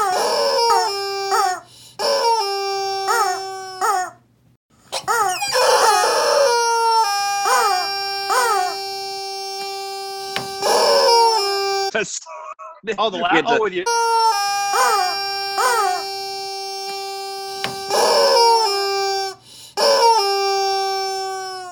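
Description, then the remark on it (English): A rubber chicken toy squawks loudly and repeatedly, drawn-out shrill honking squeals that waver in pitch, with only brief pauses, dominating the whole stretch. “We had to use the rubber chicken again.”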